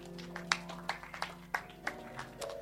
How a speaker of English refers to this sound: Your clapping is not encouraging.